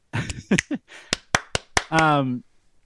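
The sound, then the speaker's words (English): A string of about six or seven sharp hand claps in an uneven rhythm, mixed with brief voice sounds and ending on a drawn-out vocal tone. “You want me to clap?”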